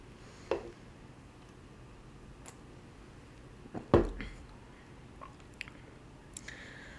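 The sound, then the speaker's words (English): Quiet mouth sounds of someone sipping an IPA beer and swallowing, a few brief wet clicks and gulps spaced out against near silence, with no talking. “So I think I'm gonna take one more sip.”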